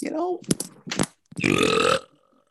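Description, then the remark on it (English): A long, loud, croaking burp rumbles out for about half a second, following a few brief vocal noises and short clicks. “What a burp!”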